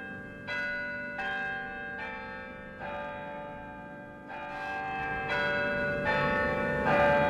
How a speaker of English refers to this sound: The historic bells of Albany City Hall return us to Albany Street, a public affairs presentation of Albany Broadcasting.